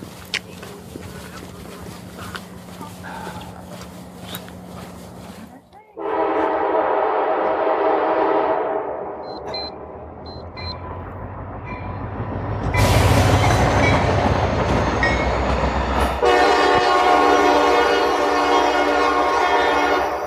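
A very big train rumbles past, its loud horn sounding in long harmonic blasts, first one sustained honk, then more bursts over the roar and rattle of passing cars.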